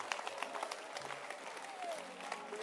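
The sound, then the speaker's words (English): A crowd breaks into steady applause for couples married two months, many hands clapping in a dense, crackling patter that stays fairly even in loudness throughout, with a few faint voices and a brief whistle-like tone underneath. “To be with a woman for 2 months, clap your hands for all those like us who have been married for 2 months.”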